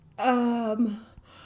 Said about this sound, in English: Sorry for yawning.